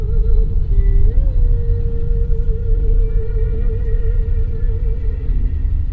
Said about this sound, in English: As buses and jeepneys rumble by